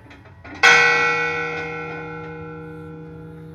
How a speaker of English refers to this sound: The first thing they would have heard of America would probably have been the fog bell ringing out across the famously foggy San Francisco Bay. And the bell is still there. Whoa. I got to ring it.